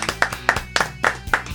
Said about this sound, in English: All right, clap it up. Okay.